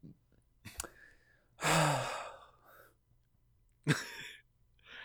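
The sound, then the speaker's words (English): A person lets out a long, breathy, partly voiced yawn, followed a moment later by a shorter sharp exhale; no speech. “I've had a couple teachers who would do that anytime a student yawned.”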